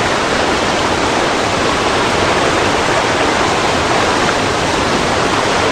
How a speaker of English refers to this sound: My first surprise has been that the river at the top was not calm and flat. There were rapids, big rapids. I floated down and camped where I first heard the roar. It sounded like this.